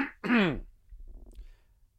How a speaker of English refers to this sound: Hold on. We got this. Let me clear my throat.